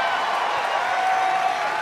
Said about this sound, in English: Well, give R2 and BB-8 and Oliver and Lee a round of applause. Thank you guys so much for coming out. Thank you for bringing out the droids.